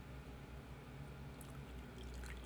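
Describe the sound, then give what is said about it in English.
Tea pours steadily close to the microphone, a continuous low liquid gurgle and splash with faint higher trickling, no talking over it. “Right, so are we doing like the ASMR tea pouring right next to the microphone?”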